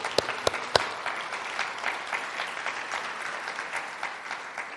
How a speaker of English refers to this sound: I believe this is the God that we should put our hands together and give him a clap offering.